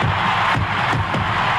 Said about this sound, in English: A sellout crowd is cheering Henry Aaron, the home run king of all time, 7-15.